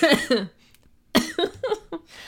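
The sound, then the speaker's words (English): A fairly loud coughing fit: two quick coughs, a short pause, then a rougher run of about four more, with no talking in between. “they were not causing me to cough.”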